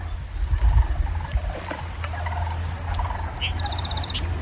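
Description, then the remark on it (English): At the Montour Wildlife Management Area on a sunny day, sandhill cranes give rolling, rattling calls far off in several faint bursts, while song sparrows chirp and trill over a low rumble of wind. “In the distance, you can hear sandhill cranes.”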